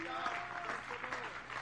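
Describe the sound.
Steady applause from a group clapping their hands in praise to the Lord, a dense continuous patter at moderate loudness with some voices mixed in underneath.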